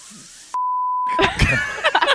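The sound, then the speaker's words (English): A single steady, high-pitched censor bleep covers an F-word said by Denny Hamlin, cutting in sharply and holding for under a second, then someone starts talking loudly over its tail. “Please don't beep out that F word.”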